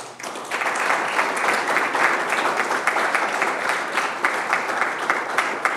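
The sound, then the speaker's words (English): Steady applause from an audience at a fire and rescue service awards night, many hands clapping together in a dense, even wash of sound that holds at a constant level for several seconds without any talking. “What a great night for our fire and rescue service, and if you don't mind, one last round of applause.”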